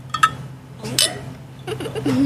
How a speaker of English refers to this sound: All right. So, one thing we do is we always cheers.